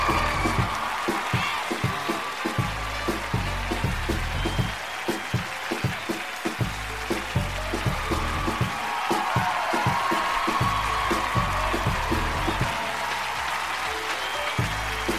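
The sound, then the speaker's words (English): Steady audience applause for Zach Galifianakis at a Comedy Central stand-up show in New York City, dense overlapping claps at an even, fairly loud level with a faint crowd murmur underneath and no voices speaking. “Give it up for clapping.”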